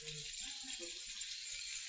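Many sets of keys, taken out of pockets by audience members, jingle on their rings at once, a steady, bright metallic shimmer lasting the whole moment. It is fairly faint, with a low murmur of voices underneath.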